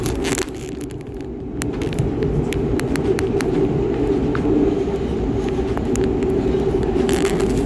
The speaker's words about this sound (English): So forgive the train in the background.